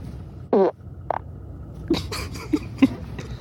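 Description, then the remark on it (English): A short, loud, buzzy fart with a slight tone rings out, followed by a few quieter, brief sputtering bursts. No one speaks. “Fart number eight.”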